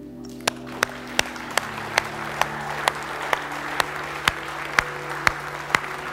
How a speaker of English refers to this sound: On your feet now, applaud God.